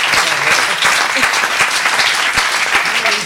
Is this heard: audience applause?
yes